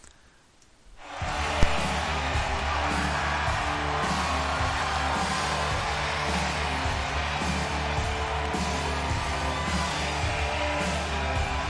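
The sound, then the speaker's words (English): After a brief hush, a sold-out WWE SmackDown crowd of 14,496 fans at the Toyota Center in Houston, Texas, back live for the first time in 70 weeks, erupts into loud, sustained cheering and roaring that holds steady to the end, with a low, rumbling undertone beneath the noise. “Listen to just the crowd and listen to everything.”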